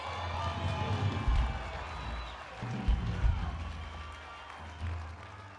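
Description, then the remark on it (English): An audience claps its hands during a church sermon about getting out of debt, in a dense, continuous patter of many overlapping claps, with crowd noise and heavy low thumps running underneath. “I think you are not clapping hands.”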